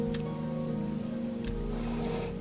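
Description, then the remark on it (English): Steady rain falling outdoors after a couple of days of heavy rain, a continuous pattering hiss with no clear breaks, heard at a moderate level along with a faint low hum. “It's been crazy rainy the last couple of days”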